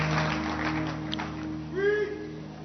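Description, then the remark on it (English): An audience claps steadily in a dense, continuous wash of hand claps, with sustained musical tones humming underneath and a brief rising, voice-like note near the end. “Clap your hands.”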